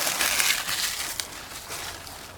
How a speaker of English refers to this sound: We could crumple up some leaves and stuff them inside this mask.